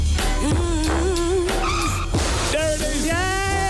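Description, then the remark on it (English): A car's tires skid and squeal in long, wavering high-pitched screeches that bend up and down over a dense, steady background, loud, with no clear impact standing out. “We found the car crash in blue.”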